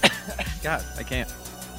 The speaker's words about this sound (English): I can't talk without coughing.